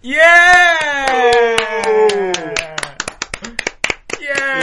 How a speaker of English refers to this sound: Yeah! Yay! Oh, round of applause.